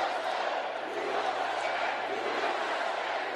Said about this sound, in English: A Keep America Great rally cheering Vice President Mike Pence's warm-up speech for the president